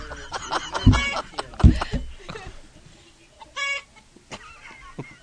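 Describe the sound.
A person imitates a hen's egg-laying clucking with a quick run of staccato clucks, two loud squawking bursts, then a higher, drawn-out cackle and a few scattered clucks, fairly loud.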